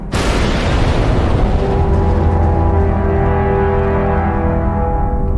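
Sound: explosion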